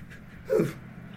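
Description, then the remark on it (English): A single short meow from a female shelter kitten picked up at a pet store, thin and slightly falling in pitch, rising briefly out of a quiet, faintly hissy background with no one talking. “There were shelter kittens, so I picked one up. No way! You got me a cat!”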